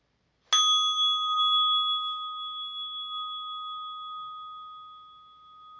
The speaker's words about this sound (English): And as the bell chimes, you might use that as a time to return to this moment.